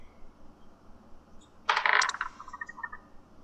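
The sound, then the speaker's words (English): A quick clatter of dice tumbling across a hard tabletop, a bright rattling burst followed by a few lighter bouncing taps as they settle, with no one speaking. “Oh, silly me, I did not have my dice ready.”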